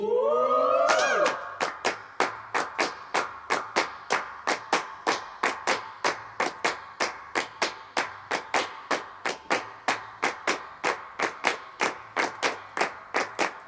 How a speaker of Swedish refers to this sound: Okej, nu kommer det bli handklapp och alternativa handklapp som vi gjorde samtidigt som vi la lite partykörer.